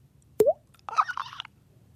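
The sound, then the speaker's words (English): A voice imitates a leaky faucet dripping: one sharp plop with a quick upward pitch bend, then a short, hissy, splashing burst. It is loud against near silence, with no talking. “you get, you know, a movie where there's a scene where you might see a leaky faucet or something, I think I've got the sound effect for you.”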